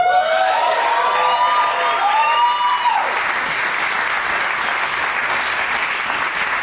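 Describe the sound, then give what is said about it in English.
A show audience applauds loudly and steadily as a guest is called up. Whistles and cheering voices rise over the clapping at first, then fade, leaving a dense wash of applause that continues to the end. “Just sitting there soaking in all the applause instead of moving his ass.”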